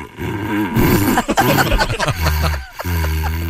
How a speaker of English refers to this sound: He has the paper towel tube in his mouth, and he's blowing on it. And this is not created by anyone but the Weimaraner dog.